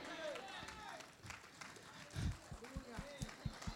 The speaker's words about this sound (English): That was such a traditional Easter morning clap. That was pathetic.